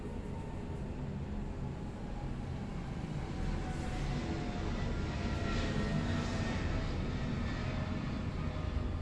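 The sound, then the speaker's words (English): An airplane roars overhead, a steady broad rumble with a faint whine on top that holds at an even level for the whole stretch without fading away. “Yeah, I'm also very thankful that I don't really have that much homework, so I can study, and thankful that an airplane is passing by.”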